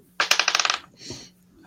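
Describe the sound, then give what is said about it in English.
Dice clatter across a hard tabletop in a quick burst of bright, bouncing clicks that rattle and settle, followed by a softer sliding rustle, with no voices. “Oh, that's the wrong dice. Stand by. Where's my D12?”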